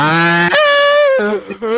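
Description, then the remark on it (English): A voice imitates a video game character's moan: a loud, drawn-out vocal wail that starts low, jumps to a higher sustained pitch, then drops back down with a brief wavering break. “No, the moaning was from the game.”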